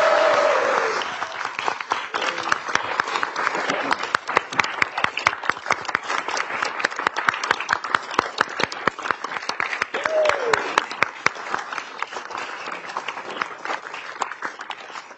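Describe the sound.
Loud, sustained applause from a large crowd during an address to a state legislature, as the speaker thanks his wife: a dense wash of clapping that stays strong throughout, with a few faint voices and whoops mixed in.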